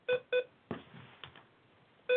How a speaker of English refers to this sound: Time for a little beep-a-thon.